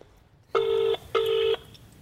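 A telephone ringback tone as reporters call the owner of a pub: one double ring of two steady, buzzy mid-pitched bursts with a brief gap between them, loud against a faint hiss, with no voices.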